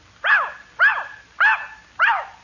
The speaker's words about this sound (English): I told you he was a smart dog.